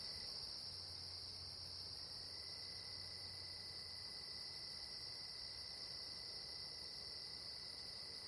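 Night insects chirp in a dense, unbroken chorus: a steady high-pitched trill overlaid with a faster pulsing buzz higher up, plus a thin sustained whine, all constant and without any voices.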